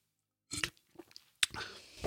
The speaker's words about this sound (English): And hold on, I got to take a sip of something real quick.